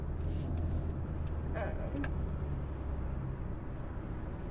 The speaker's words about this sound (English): Okay, really? This car is being quite rude.